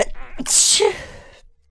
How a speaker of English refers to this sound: I sneezed. Yeah, boy, open wide. Yeah, you sneezed.